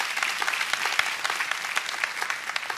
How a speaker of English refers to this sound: If you got the point, say amen. Amen. Can you give the Lord a big hand clap to that, if you got the point?